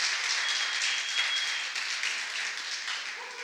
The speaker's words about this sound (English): If you guys would come up, give them a clap as they do that.